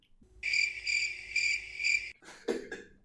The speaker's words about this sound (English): Yeah, we could be here a while. Insert cricket drop here.